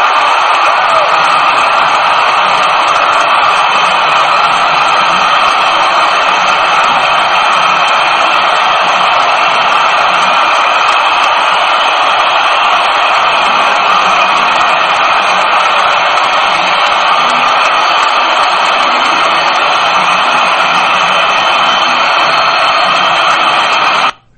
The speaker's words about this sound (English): you can hear the crowd. It's bedlam in Baltimore, as the city's favorite son did them proud.